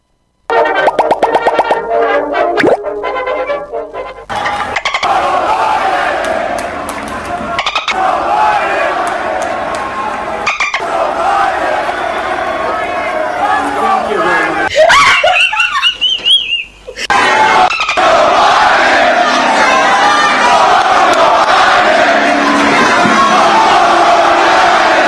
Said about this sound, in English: This is the crowd chanting blank Joe Biden as Donald Trump was coming up to the podium